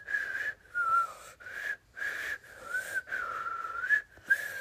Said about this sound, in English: And then they just whistled along to find it. Nice whistling.